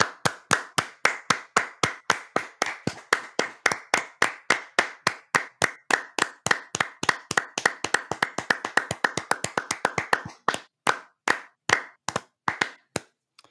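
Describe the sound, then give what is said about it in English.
A few people clap their hands together in a steady, fairly quick rhythm, the claps overlapping and speeding up slightly before tapering off into a handful of final claps, with no talking. “So can we get it? Can you clap? Let's clap.”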